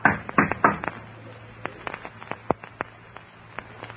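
A quick cluster of sharp knocks on the wooden door of a theater manager's office, then scattered lighter raps spaced out over several seconds, clear against a low steady hum.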